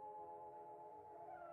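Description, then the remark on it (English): Dogs howl in a long, sustained, wavering chorus in a scene from a Bava film, heard by Prince Vida lying awake in his bed; the drawn-out tones overlap steadily with no voices or other sounds breaking in. “This is a fine example, as Bava's camera tracks out from the fireplace in Prince Vida's room and prowls around until it finds him, awake in his bed, beset by fears and the sounds of howling dogs.”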